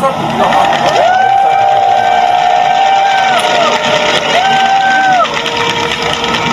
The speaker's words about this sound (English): So the big cheer that just went up was in response to the blood being poured outside one of the gates of Government House, and just before the blood was spilled, there was a curse that was delivered, a blood curse against the government of Thailand.